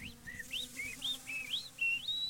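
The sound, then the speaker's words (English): A person whistles a quick run of about eight short, high, chirpy notes as a battle cry, some sliding upward and others held level, climbing in pitch toward the end, with no talking. “He's trying to whistle it down. That's his battle cry.”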